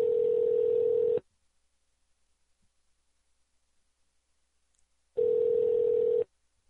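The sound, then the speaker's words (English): Two rings of a telephone ringback tone heard over the line while phoning a guest, each a steady, slightly buzzy hum lasting about a second, separated by several seconds of silence. “If he answers the phone, of course. Why isn't this ringing?”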